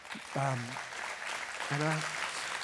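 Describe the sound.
An audience applauds a speaker's mention of 30 years together with his wife, 25 of them married. The clapping is a steady, dense wash that lasts throughout, while a voice briefly rises over it twice.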